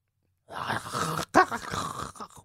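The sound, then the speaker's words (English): A person imitates zombie groans: a long, raspy, guttural moan, a brief break, then a sharp strained grunt trailing into another drawn-out growling groan that fades out. “can you make some zombie noises?”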